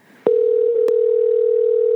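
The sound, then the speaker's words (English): A phone call to a father connects with a click, then a steady, unbroken mid-pitched ringing tone hums on its own, interrupted briefly by a second faint click. “Call your dad. He'll answer.”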